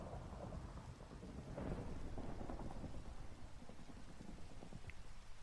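Steady rain pours down with a low, rolling rumble of thunder building and swelling through the middle, a continuous stormy wash with no voices.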